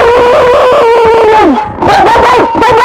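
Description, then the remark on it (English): A dog howls in long, wavering tones that sag low, break off briefly, then rise into a second drawn-out wail. The sound is loud, with no talking. “It's the ghost of a dog.”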